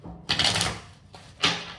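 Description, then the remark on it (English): Tarot cards are shuffled: a rapid, papery riffling clatter for about half a second, a short pause, then a second brisk flutter as the deck is shuffled again. “I'm going to shuffle them here to see, show you that I'm actually shuffling them.”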